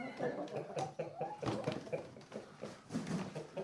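Hens cluck in a busy, overlapping chatter with a rooster among them, short throaty calls coming one after another, fairly loud and continuous throughout.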